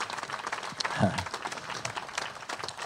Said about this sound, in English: So would you let him know how much you love him, at least through your applause for sharing that story with us.